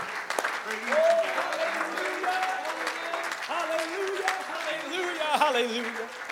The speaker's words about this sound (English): I wish one more time we clap our hands and give a shout of praise unto the Lord.